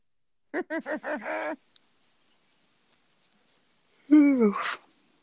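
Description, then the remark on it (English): A person yawns, a drawn-out voiced breath that swells and then fades, following a few short murmured vocal sounds a few seconds earlier. “You shouldn't yawn on the podcast. I shouldn't, but I did.”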